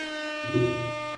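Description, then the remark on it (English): A single loud air horn blast holds a steady, brassy tone for just over a second, then cuts off abruptly. No one speaks over it. “That deserves air horns.”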